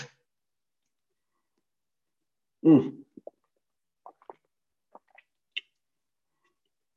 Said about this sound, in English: Actually, I'm going to take a sip of water real quick.